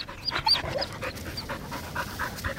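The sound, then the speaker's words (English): A dog in Newtown, an inner-city suburb of Sydney, pants quickly and steadily, a run of short, breathy huffs with no one speaking, over a faint background hum. “People with dogs attract people.”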